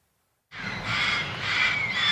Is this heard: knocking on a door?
no